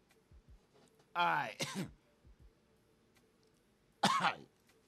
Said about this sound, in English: That was some cough up a lung shit right there for real